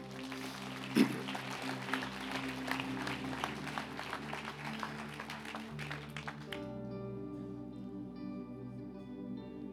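An audience claps steadily for several seconds, a dense, fairly loud patter of many hands, which then stops and gives way to sustained musical tones.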